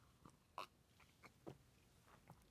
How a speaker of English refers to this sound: So let me get a sip of coffee. Excuse me one second.